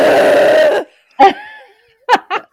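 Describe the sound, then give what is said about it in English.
A voice imitates the loud, strained groan made while pushing during labor, held for nearly a second, then breaks off into a few short, breathy bursts of laughter. “It was just something like that, like, I don't know, extreme groan.”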